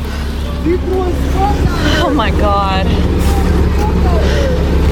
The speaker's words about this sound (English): There's the bus going in. Now comes the Border Patrol agent and apparently his personal truck.